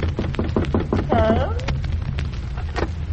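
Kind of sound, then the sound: household object, knocking on a door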